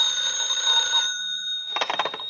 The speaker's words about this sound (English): A few minutes after the grandfather clock struck 11, the telephone rang.